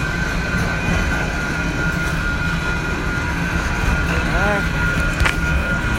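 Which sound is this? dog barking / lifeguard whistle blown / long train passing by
long train passing by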